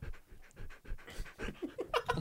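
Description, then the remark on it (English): A dog pants rapidly right up against the microphone, a steady run of quick, breathy huffs that grows louder and more strained toward the end, with no talking. “Are you handing your microphone to your dog?”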